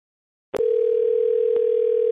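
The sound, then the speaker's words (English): After a moment of silence, a click gives way to a steady, unbroken telephone dial tone as an outbound call is placed, a loud mid-pitched hum that holds to the end with one faint click partway through. “Someone has been hammering the line, so we are making outbound calls now, and we're going to call them until they answer.”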